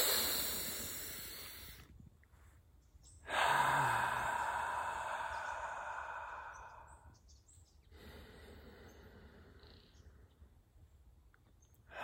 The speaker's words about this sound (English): So we're going to be consciously breathing throughout this meditation. Let's start with 3 deep breaths before we get into our toes. 3 deep breaths right now.